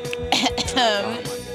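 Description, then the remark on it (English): A fairly loud burst of harsh coughing and throat clearing, two or three rough hacks running into a strained voiced rasp, all over in under two seconds. “Hey, don't be coughing.”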